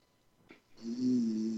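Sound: person snoring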